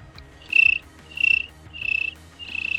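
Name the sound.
voice imitating cricket chirping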